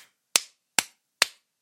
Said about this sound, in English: All right, let me do the clap. Do it. Since you want to do the clap.